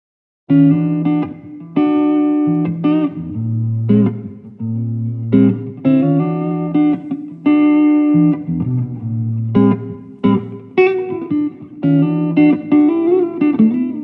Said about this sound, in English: There does seem to be a tiny amount of reverb already. Normally, when you use the natural echo chamber technique, you want the dry signal to be completely dry. But sometimes, as you will hear, it doesn't matter. Here's the reverb.